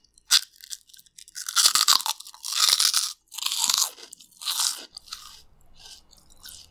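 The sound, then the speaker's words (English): A light, airy piece of crispy pork skin, about 1 inch by 1 inch, crunches loudly as it is eaten, several sharp, bright bites and chews in a rapid irregular series, then softer chewing trailing off, with no talking. “It's super crunchy. Not in like a hard crunchy, but almost like in a crispy way.”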